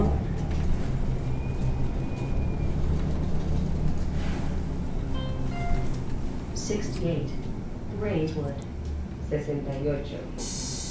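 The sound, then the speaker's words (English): Steady low engine rumble and road noise fill the interior of a moving Metro city bus, with brief faint tones and indistinct voices murmuring near the end. “I am on the right bus.”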